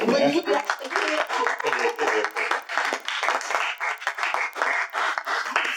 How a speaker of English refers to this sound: Thank you. Can we applaud?